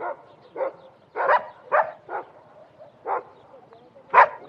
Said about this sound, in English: There was a few dogs that were barking, but otherwise the dogs were pretty quiet. I think because they were kind of scared.